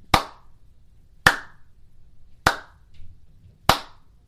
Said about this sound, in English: It's Monday. I just had to do a slow clap